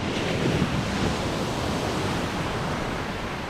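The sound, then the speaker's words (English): Ocean waves crash and roar in a steady, dense wash of surf that fills the whole stretch, loud, with no voices present; the waves are shown crashing against huge video screens at the entrance of the Legacy Museum in Montgomery, Alabama. “The first thing you see when you walk into the Legacy Museum in Montgomery, Alabama, are ocean waves crashing up against huge video screens in front of you.”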